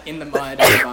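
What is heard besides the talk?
sneeze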